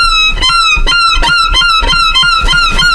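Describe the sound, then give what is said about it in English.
A man playing a violin mimics a seagull's cry with a rapid string of shrill, sliding squeals, repeating roughly every half second, loud with no voices. “So one is a real seagull and one is a guy playing a seagull on a violin.”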